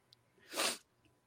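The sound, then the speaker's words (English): A single short sniffle, a quick breathy hiss of air through the nose that swells and fades in under half a second, with quiet around it and no talking. “We have the first sniffle of the show.”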